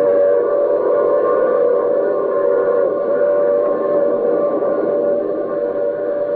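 A loud, sustained train whistle blares for several seconds in a steady multi-tone chord, with a low rumble of a passing train underneath and no one speaking.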